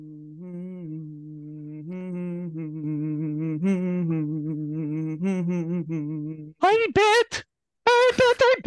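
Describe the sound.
A guest hums a melody with no words for about six seconds as an intro cueing in a singer, a steady voiced tune with shifting pitch, then a brighter, more forceful vocal takes over at the end.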